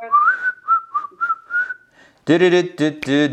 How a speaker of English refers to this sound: Whistle while we work.